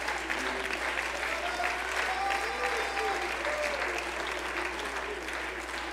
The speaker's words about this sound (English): Hold on, clap your hands unto the Lord one more time.